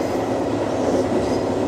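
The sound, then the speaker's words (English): Steady, continuous rumble of an Amtrak train riding on rails toward New York at 3 o'clock in the morning, heard from inside a carriage, with a dense low roar and faint rhythmic rattling throughout, no voices. “it's now 3 o'clock in the morning, and I'm on an Amtrak train, heading towards New York.”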